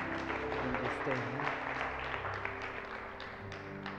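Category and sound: crowd, audience clapping hands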